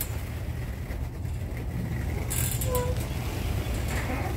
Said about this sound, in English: Let's see if it opens it. Okay, please don't hit my garage door. It's opening up the garage door.